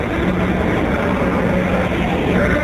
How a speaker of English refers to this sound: Ignition sequence starts. 6, 5, 4, 3, 2, 1, 0. All engine running. Liftoff. We have a liftoff. 32 minutes past the hour. Liftoff on Apollo 11.